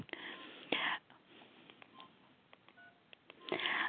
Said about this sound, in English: And I'm just going to set my timer here.